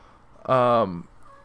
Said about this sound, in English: Sorry, my cat is meowing in the background because I think he's hungry, so I'll probably feed him after I'm done recording this.